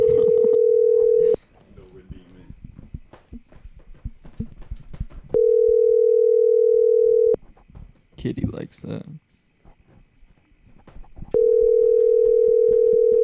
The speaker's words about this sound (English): Ooh, three rings. Low chance he answers.